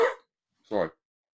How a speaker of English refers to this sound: I'm going to cough.